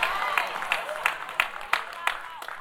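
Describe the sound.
A church audience clapping together during a prophet's teaching, in a steady, even rhythm, sharp claps landing roughly three times per second, with murmuring voices running underneath.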